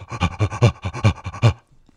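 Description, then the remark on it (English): A man imitates rhythmic, guttural, gorilla-like breathing through a tube against glass: about eight quick, heavy panting huffs in a steady beat, fairly loud, then a brief fade to near silence. “He started doing this sort of rhythmic, guttural, gorilla-esque breathing through the tube. It sounded sort of like this.”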